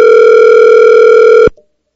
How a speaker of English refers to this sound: I guess third time's a charm with your phone. I dialed the number.